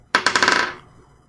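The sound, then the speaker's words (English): Dice rolled for a hammering wind attack clatter across a hard surface: a sharp first hit followed by a quick run of six or so bright, rattling clicks that fade out within about a second. “So let me roll.”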